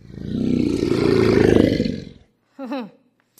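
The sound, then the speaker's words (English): A loud lion roar rumbles deep and raspy for about two seconds, then cuts off, followed by a brief vocal snippet. “And if someone prayed to anyone or anything besides King Darius, then they would be thrown into the lion's den as punishment.”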